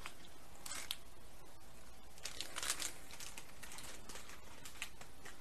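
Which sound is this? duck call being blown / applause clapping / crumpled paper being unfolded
crumpled paper being unfolded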